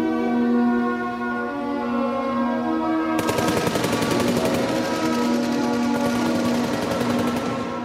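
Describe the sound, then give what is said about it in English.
A steady tonal drone holds for a few seconds, then loud rapid automatic gunfire erupts and rattles on in dense, continuous bursts to the end, with no voices. “Yeah, that's gunfire.”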